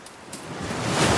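Ocean waves wash up onto a sandy beach as the tide comes in, a broad hiss of surf that swells steadily louder over a second or so, with no voices.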